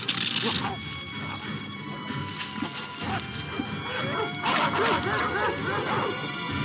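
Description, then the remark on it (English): Dogs snarl, growl and bark in a chaotic scuffle, with yips, a whimper and crashing knocks over a dense, noisy background, as Ace, now a full-grown dog, is about to fight a giant muscular bulldog. “And then we cut to a little bit later on in the story when Ace has grown up into a full-grown dog from his...”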